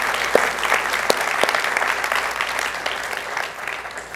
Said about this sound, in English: Mill Creek, would you give a warm applause for these fantastic deacons that we have?